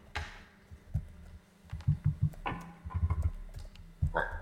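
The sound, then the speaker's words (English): A computer mouse being handled, with scattered sharp clicks and soft thuds and scrapes arriving in quick irregular bursts, no one speaking. “My mouse is misbehaving itself.”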